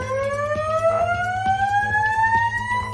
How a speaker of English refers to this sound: Fire alarm.